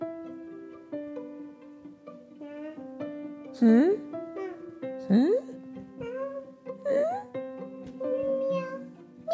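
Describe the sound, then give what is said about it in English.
A child's voice imitates a cat, giving several drawn-out, rising meows with sustained tonal vocal sounds and brief pauses between them. “Meow. Oh, he's a cat.”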